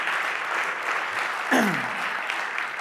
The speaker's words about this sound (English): Can we give the Lord a clap offering on that?